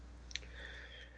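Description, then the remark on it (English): A single soft click like one key press on a small keyboard as a poker bet amount of 247 is typed in, brief and quiet, followed by a faint steady hum with no voices. “So I'm typing out 247 on the little keyboard there.”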